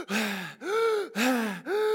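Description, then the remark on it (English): A person imitates the heavy, gulping breaths of an Olympic athlete straining in a 100-meter race, about four loud voiced gasps in a quick, steady rhythm, alternating inhale and exhale, with no other sounds. “And when they breathe, they are taking in these huge gulps of air to fill their lungs.”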